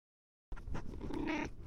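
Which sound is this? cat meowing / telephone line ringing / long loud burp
cat meowing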